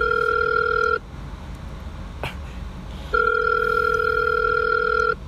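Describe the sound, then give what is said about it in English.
A phone line's ringback tone from an outgoing call: two steady electronic ring bursts separated by a pause of quiet line hiss, clear, with no voices. “you better answer your phone.”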